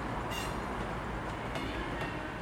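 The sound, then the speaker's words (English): A train on the Great Western Main Line at Platform 12 of Temple Meads station, South Bristol, rumbles heavily along the rails on an early Monday morning in mid-November, a steady low grumble with brief high-pitched metallic screeches cutting through now and then, loud, with no voices. “Up on Platform 12, the Great Western Main Line screeches and grumbles.”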